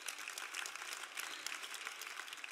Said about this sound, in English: How many people know that? Clap your hands if you know it.